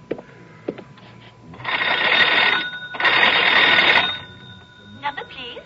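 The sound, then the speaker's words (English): An old telephone bell rings in two loud, buzzing bursts about a second long each, with brief faint voice sounds before and after; a telephone used to call the operator to reach Balcombe Police Station. “May I use your phone?”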